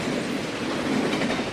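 A train rolling along with a steady rumble and clickety-clack of wheels on the rails, fairly loud, with no voices over it.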